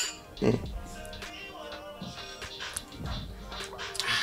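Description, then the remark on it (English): A few light, bright clinks of glasses touching in a toast as the EOB Salon Talk welcome, with one brief ringing tone, amid murmuring voices and background chatter. “Let's do our EOB welcome. Cheers.”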